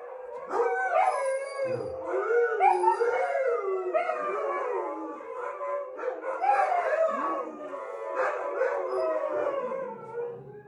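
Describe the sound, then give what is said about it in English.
A chorus of huskies howls together, several overlapping wavering, sliding voices rising and falling continuously, fairly loud, with a few yips mixed in and no talking. “You don't have to go terribly far online to find a video of huskies in full throat singing and howling the song of their people.”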